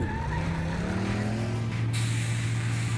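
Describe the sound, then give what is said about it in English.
A race car engine revs hard during a race with rising and falling pitch, then a harsh burst of tire screech cuts in near the end, loud with no talking. “Pedal to the metal! Let's go!”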